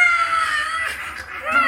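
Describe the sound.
A voice imitates the horrible screech of a knobbly vine blight monster: one sustained, strained, high-pitched shriek lasting under two seconds, loud, wavering slightly before rising again at the end.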